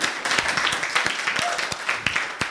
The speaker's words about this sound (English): Isn't God amazing? Give him a clap.